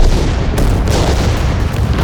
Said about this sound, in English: Suddenly, as if to confirm the men's suspicions of concealed ordnance, an enormous set of explosions occurred.